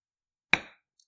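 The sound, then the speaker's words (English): A single bright clink of glasses tapping together in a toast, sharp, ringing briefly before fading into quiet. “Speaking of, I think we should toast to our final baby.”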